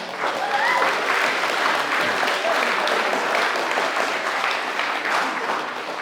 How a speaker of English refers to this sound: I think we need to give the Lord a clap.